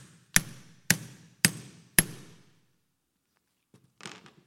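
Four sharp, evenly paced blows of a hammer designed for framing nails drive a large framing nail, each strike loud with a brief ringing tail, followed by quiet and a faint shuffle of handling.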